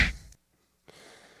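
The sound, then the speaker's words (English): A single punchy slap-or-punch sound effect played from a sound effect button hits loud at the start and fades quickly, followed by a short silence and then a low, steady background hiss. “Give him a slap. Or a punch.”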